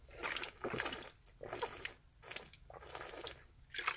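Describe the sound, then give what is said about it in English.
Wet gulping from someone drinking water: four or five swallowing bursts in a steady rhythm, with faint sloshing between them. No one speaks. “Let me take a drink of my water.”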